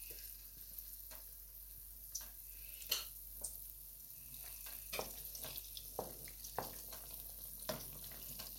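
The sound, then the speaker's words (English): Steady crackling and hissing of spoonfuls of callaloo fritter batter deep frying in plenty of hot oil, with sharp pops and spits scattered irregularly throughout; no one speaks. “Okay, I'm just dropping like a spoonful of the batter into, we've got like quite a lot of oil, we're kind of deep frying them.”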